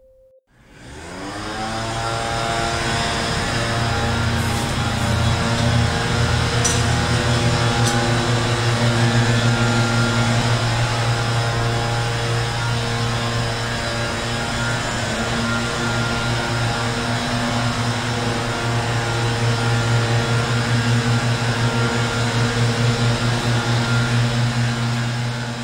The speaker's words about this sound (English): And now, the sound of a man-made thing we wish were extinct. The California leaf blower.